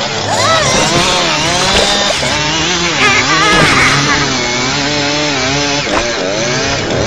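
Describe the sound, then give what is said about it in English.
A chainsaw roars for several seconds, its engine whining and revving up and down in a loud, continuous buzz. “Chainsaws.”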